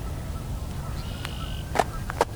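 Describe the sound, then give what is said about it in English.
Red-winged blackbirds call across a cattail marsh at Coots Paradise, one perched up a willow tree in its middle: a thin, sustained whistle, then two short buzzy trills about half a second apart, fairly faint over a low background rumble with no voices. “Everyone has a different measure, but this is usually, for me, the beginning of spring, when the red-winged blackbirds return and start singing.”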